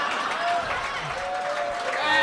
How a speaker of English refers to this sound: They're applauding that joke because they've heard it already. They're applauding it because I say it every time.